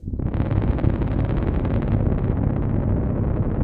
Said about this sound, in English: Get two tubas. And having them play two different notes. As loud as they can. It's just this kind of war rumble.